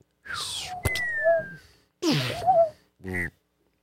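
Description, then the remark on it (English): Someone vocally imitates a vortex whistle in flight: three breathy, whooshing bursts with thin gliding whistle tones, the last one short and buzzy, with brief pauses between them. “Can you do your best impression of what the vortex whistle sounded like?”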